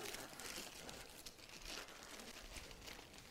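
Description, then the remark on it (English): Wrapping paper crinkles and rustles steadily for a few seconds, fairly quiet, with dense crackling bursts as it is pulled apart while a gift is unwrapped. “It's quite nice wrapping paper, that, isn't it?”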